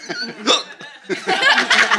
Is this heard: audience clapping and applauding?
no